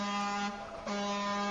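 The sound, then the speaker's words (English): A horn-honking sound effect: a loud, brassy vehicle horn honks twice in quick succession, a long blaring blast followed immediately by another, with a steady buzzing tone and no talking. “Honk, honk.”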